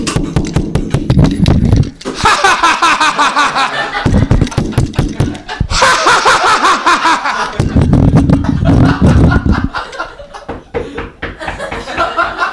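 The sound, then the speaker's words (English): A voice imitates a drunk man fumbling with a lock, with rapid, rattling mouth clicks and clacks mixed with snorting, chuckling vocal noises in loud, uneven bursts that run on for several seconds. “Because I just heard a man attempting to use a lock. You know, like when drunk people use a lock and it's like the first time they've ever heard of a door, let alone a lock?”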